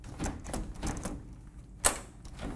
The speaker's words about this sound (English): Now, back door, look at it. You're gonna open it. I wanna make sure it locks and latches.